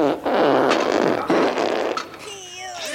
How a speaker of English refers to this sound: It's Windy Winston who has the great idea to fart, to wake up, to stir Dodger from his sleep, and sure enough, it works.